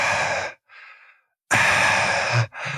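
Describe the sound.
A voice imitates heavy breathing: loud, rasping exhales broken by a quieter inhale, repeated in a slow, deliberate rhythm with no speech.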